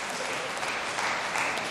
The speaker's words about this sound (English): You're going to clap that? Who clapped that? Stand up, who clapped that?